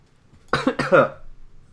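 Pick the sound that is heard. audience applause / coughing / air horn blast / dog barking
coughing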